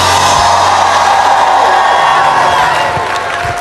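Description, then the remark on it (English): A large crowd screams and cheers loudly and continuously, a dense roar of voices with whoops and some clapping, easing off slightly near the end. “If you're glad about it, scream right there.”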